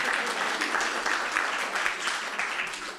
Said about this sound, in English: clapped a bit loud there.